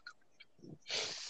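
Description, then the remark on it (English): A single sneeze: a short sharp intake followed by a loud, breathy burst of noise near the end. Fairly quiet overall, with no one talking. “Bless you, whoever sneezed.”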